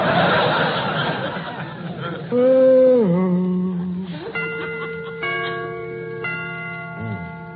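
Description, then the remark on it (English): After a short burst of laughter and a falling hum, a clock chimes several times, each ringing stroke starting about a second apart and sustaining over the previous one. “Get them chimes made softer. No sense in letting the neighbors hear the time for nothing.”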